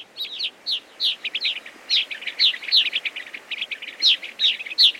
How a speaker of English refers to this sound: They are gray-crowned rosy finches, coming to roost for the night in an extensive colony of abandoned cliff swallow nests.